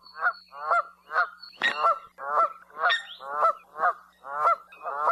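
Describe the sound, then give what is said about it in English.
Canada geese honk loudly in a steady, rapid series of about a dozen harsh calls, one after another, with a faint low hum underneath and no talking. “They're particularly noticeable overhead when flying in a characteristic V formation, honking loudly.”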